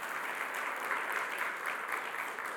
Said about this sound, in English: Give the Lord a hand clap because it's big.